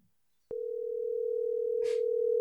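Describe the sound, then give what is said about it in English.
A phone line's ringing tone starts abruptly after a short silence and holds as a steady, loud, continuous electronic hum, with a brief soft hiss near the end and no talking. “Is it ringing? Yeah, it's ringing.”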